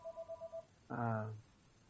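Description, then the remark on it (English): A quick series of five short electronic telephone ringing tones on an outgoing call beeps at an even rhythm, fairly quiet, followed by a brief burst of a voice. “While the phone is ringing, I'm going to see if we have any comments.”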